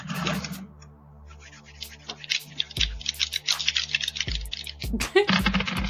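Twenty-sided dice (d20s) clatter and tumble across a hard tabletop in several quick bursts of sharp clicks and rattles, with a faint murmur of voices underneath.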